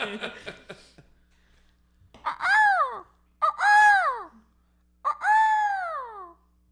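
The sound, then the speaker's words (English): A person voices three loud, drawn-out descending screeches imitating a hawk's cry, each harsh call sliding downward and separated by short pauses, after a brief moment of murmured talk. “Is a hawk on a summer day in a clear sky.”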